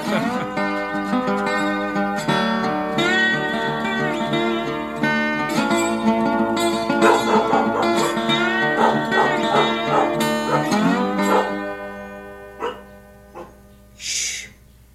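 A dog barks and yelps almost continuously, with drawn-out whining, howl-like tones, then falls quieter with a couple of separate barks near the end. Close and fairly loud.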